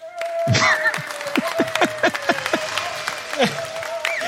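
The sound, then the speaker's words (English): A crowd cheering sound effect: steady clapping mixed with a string of rising and falling whoops and whistles, fairly loud throughout and continuing for several seconds without any talking. “Ooh, the audience agreed with that.”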